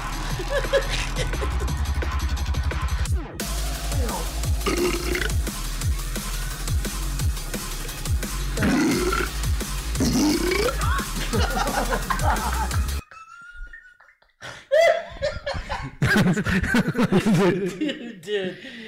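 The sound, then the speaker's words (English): A loud, steady dance beat packed with repeated burping sounds runs for most of the stretch, then cuts out, leaving people chuckling and talking. “Dude, imagine people dancing to that. With all the fucking burps going on.”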